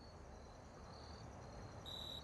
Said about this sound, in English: And then finally, the crickets.